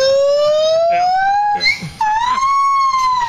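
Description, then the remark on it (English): A gibbon call: a loud, pure, whistling wail that slides steadily upward, breaks briefly, then rises again in a second sustained siren-like sweep, clear. “This is Gibbon in heat, I guess.”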